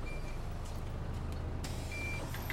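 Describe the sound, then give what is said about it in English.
The N29 night bus idles with a heavy, steady low rumble as passengers board, while two short high electronic beeps sound a couple of seconds apart, and a brief airy hiss bursts in between. “Getting on the N29 now.”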